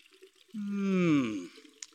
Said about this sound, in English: And you will need some water. as quick as they could, the people fetched a huge kettle and pails of water. Now, set the pot down and pour in the water.